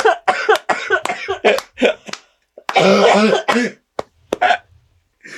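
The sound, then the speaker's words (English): A harsh, rapid coughing fit: several sharp hacking bursts in quick succession, then a longer raspy, strained cough and a few final sharp coughs, loud with no talking. “Oh, God, I've got to have the other half of this cough drop.”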